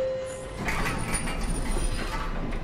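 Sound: elevator door sliding open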